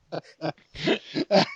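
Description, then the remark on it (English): Someone clears their throat several times: a few short, rough rasps, then two longer, harsher grunting bursts, fairly loud and with no speech around them. “Please clear your throat one more time on the podcast.”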